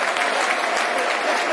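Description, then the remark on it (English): Steady applause from a stadium crowd at a Reading versus Millwall football match as player Jeb Wallace is substituted off, a dense, even wash of clapping that holds at a constant loudness throughout without any voices rising above it. “Good applause.”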